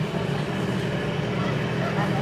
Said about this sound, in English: Whoa, is that a motorcycle I hear outside?